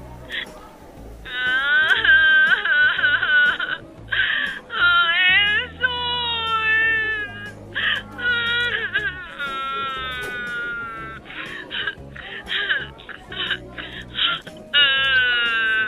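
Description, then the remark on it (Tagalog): A person wails and sobs loudly, crying in long, quavering bursts broken by short catches of breath, over a low steady background hum. “So, umiiyak ka nga?”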